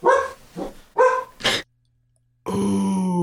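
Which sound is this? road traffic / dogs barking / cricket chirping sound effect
dogs barking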